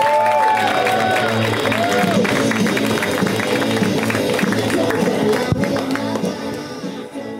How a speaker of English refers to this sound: You keep it going. Keep that music playing. Keep it going. Keep clapping. That's true. Keep it clapping. Keep that music going.